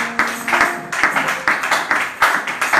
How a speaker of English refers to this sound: Clap your hands unto Jesus.